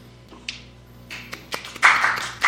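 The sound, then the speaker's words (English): A handful of soft, scattered hand claps, slow and unevenly spaced, with a slightly fuller burst near the end, like a polite golf clap with no voices. “You got a hot wife. Golf clap.”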